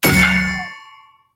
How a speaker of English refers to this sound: I'm not sure what that sound effect was. It was a bang. I just downloaded like a bang noise. Oh, did you hear the bang before you downloaded it? Yeah, was it bad? It sounded like somebody dropped like a tire iron onto a tire that was on the ground.